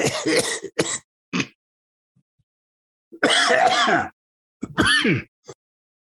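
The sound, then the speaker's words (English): Someone imitates a lingering cough, three quick rasping coughs, a short pause, then two longer, throaty throat-clearing bursts, loud with no talking. “Cough that I shouldn't have imitated, because then I was just trying to imitate it, and all of a sudden it's a terrible thing.”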